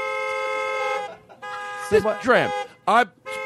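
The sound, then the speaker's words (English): A newly changed novelty horn on a 1986 Buick blares in long, buzzy, steady tones that cut off and restart, with wavering, voice-like swoops sounding over it in the middle. “And she drives an 86 Buick, but she just had the horn changed.”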